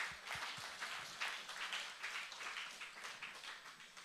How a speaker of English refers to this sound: Come on, let's clap.